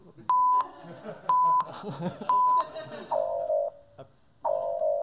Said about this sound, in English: What the hell is that? That's what happens when you run out of time. There's a 5 second countdown.